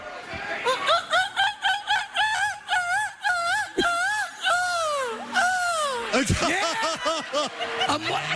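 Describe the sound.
A man's voice imitates a seagull with a long run of loud, wavering squawks in quick succession, rising and falling in pitch, ending in a few sharper, choppier cries.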